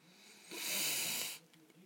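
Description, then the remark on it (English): A long, breathy yawn exhaled for about a second, then a brief, quieter guttural sound like a small burp. No one speaks. “Oh, sorry for that yawn and the burp there.”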